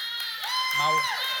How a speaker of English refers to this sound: Hey, just real quick, just a round of applause.